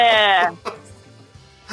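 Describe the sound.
A person gives a loud, wavering goat-like bleat for about half a second, a voice imitating the animal, followed by a short quiet stretch with a few faint sounds.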